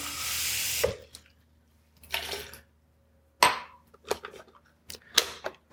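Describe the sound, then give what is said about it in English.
Water is poured into a blender in several splashy bursts: a longer pour at first, then shorter gushes and quick splashes. It sounds fairly loud, with quiet gaps and no talking. “We're just gonna add a little bit of water to this to keep it nice, creamy.”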